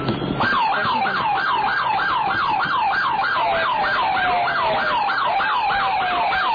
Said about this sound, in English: Oh, here comes the ambulance. Yeah. Oh, this is a paramedic.